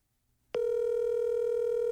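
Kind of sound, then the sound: signal or alarm, phone call ringing tone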